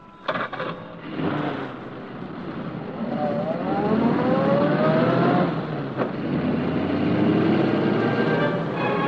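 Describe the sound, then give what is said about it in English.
A car engine revs up with rising, whining pitch as the vehicle accelerates and drives along, loud, with steady road rumble underneath and no voices. “Drive past and keep going.”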